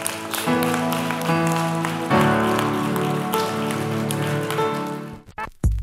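A crowd claps in praise to God in a steady, dense, continuous wash of applause, with sustained keyboard or organ chords ringing underneath, before cutting off abruptly near the end.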